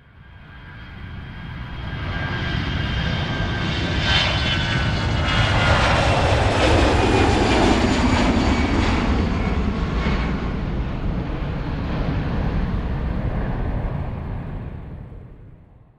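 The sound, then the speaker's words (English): A small single-engine Skyhawk airplane drones steadily, its engine swelling louder toward the middle and then easing off as it passes, with no voices. The engine runs at reduced RPM with a smell of oil in the cockpit as the pilot declares an emergency about 11 miles northwest of Anoka. “Got the smell of oil in my cockpit and the engine is reduced RPM.”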